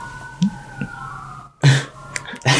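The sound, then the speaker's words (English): A fire engine siren outside holds a thin, steady wail in the background, then fades out partway through as it moves further away, while a few sharp coughs or throat-clearing bursts break in over it. “Pardon all the sirens if people hear that in the background.”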